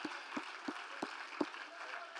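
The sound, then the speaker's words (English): A crowd claps in praise of Jesus having blotted out their sins, over a steady wash of applause, with five sharp, evenly spaced beats cutting through, each about a third of a second apart. The overall level is fairly soft. “Oh, come on, I know some of you are guests, but why don't you go ahead and clap for the fact that Jesus has blotted out your sins.”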